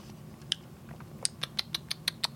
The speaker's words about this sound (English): Sorry, you're going to hear me drinking some water here.